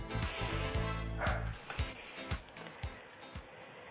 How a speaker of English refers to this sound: For those that probably heard the gizmo barking during our break, I apologize. That's his contribution.